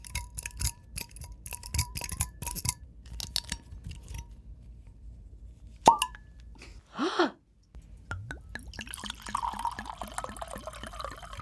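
A cork pops from a bottle of an unreleased, hand-labeled new-release wine with a single sharp, hollow burst after some light clicking and handling. It is followed by the trickling gurgle of the wine being poured.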